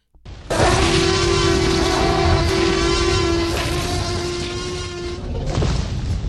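A T-Rex dinosaur roar made from blended dog, penguin, tiger, alligator and elephant sounds: one loud, harsh bellow that erupts suddenly and holds for about five seconds over a steady droning tone, swelling again briefly at the end.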